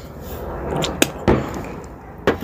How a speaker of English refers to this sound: And your fireworks going off already. Man, I love it. I just love 4th of July. You get to hear everybody popping fireworks and just celebrating.